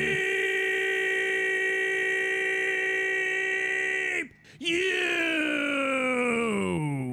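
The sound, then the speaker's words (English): A voice holds a steady, buzzy, beep-like tone for about four seconds, briefly drops out, then returns with a wavering, slowly rising pitch as the imitated beep fizzles. “I don't want to like criticize your beep, you, but the beep fizzled out.”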